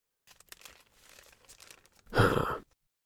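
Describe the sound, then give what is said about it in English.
Paper crumples with soft, scattered crinkles for a couple of seconds, then a sudden loud crunch of crushing paper bursts out near the end before falling silent. “To your growing phobia collection, you can now add large heap of crumpled paper.”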